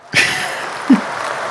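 A short burst of applause starts abruptly and holds as a steady, dense wash of clapping for just over a second, with a brief low thump partway through.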